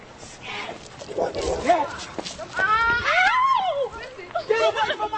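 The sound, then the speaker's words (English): Dogs bark and yelp in a frantic scuffle, their sharp cries rising and falling over several seconds amid agitated human voices and general commotion: a woman's two dogs, one named Zelina, set on a news reporter and photographer, one biting the reporter's forearm. “Then she sicks her two dogs on us.”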